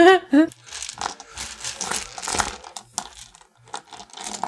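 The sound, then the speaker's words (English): Dice rattle and clatter in a busy, irregular stream of small hard clicks, lasting several seconds after a brief vocal sound at the very start. “Who's rattling dice over there?”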